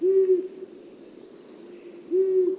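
Two low, steady hoots of a long-eared owl, one at the start and one near the end, separated by a quiet pause with faint background hiss; no talking.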